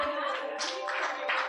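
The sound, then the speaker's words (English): A crowd claps in a steady, dense patter of many hands, fairly loud and continuous throughout, with no voices standing out above it. “Please clap for him.”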